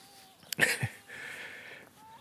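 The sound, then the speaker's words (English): Seagulls cry out overhead: a sharp, loud squawk followed by a longer, steadier wail, with no one speaking. “I have the seagulls above me.”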